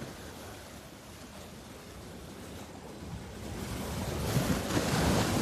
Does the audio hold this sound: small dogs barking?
no